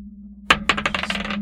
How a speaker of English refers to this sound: God. Bless America, I dropped the dice. 11! Nice.